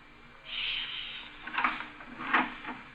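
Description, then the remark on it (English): A door is eased open carefully and quietly to peek in: a soft brushing hiss, then two faint clicks or creaks from the latch and hinges, low in volume, with no one speaking. “Well, we'll open the door carefully and peek in.”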